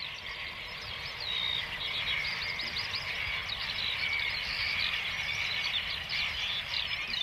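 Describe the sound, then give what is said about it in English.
A dense chorus of high twittering calls from thousands of migratory shorebirds that breed in the Arctic, swirling in the sky after something spooked them, overlapping steadily and without pause for the whole stretch, with no one speaking. “Thousands of birds just swirling around. Something spooked them.”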